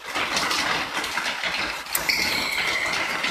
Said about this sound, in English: And I'm just going to pause and let you listen to the rain. It's amazing.